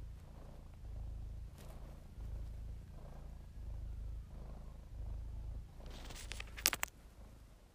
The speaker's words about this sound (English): Here's the cat purring for a bit of ambient noise.